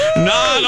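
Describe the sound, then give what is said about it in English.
A single short meow from Kenny the Traffic Kitty, loud, with a bright tonal wail that bends up and then slides down over less than a second. “That's right, our mystery date is the one and only Kenny the Traffic Kitty.”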